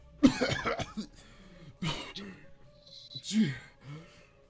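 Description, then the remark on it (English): A person coughing up blood gives three harsh coughs, spaced over a few seconds, each a loud raspy burst trailing into a strained, throaty rasp, with quiet breathy sounds in between. “Starts coughing up blood.”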